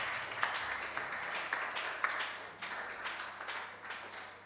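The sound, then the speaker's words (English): An audience claps steadily for the Lord in a dense, continuous patter of many hands, moderately loud, with no voices standing out for several seconds. “Give the Lord a hand.”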